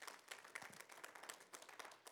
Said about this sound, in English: Come on, let's give the Lord a hand clap of praise.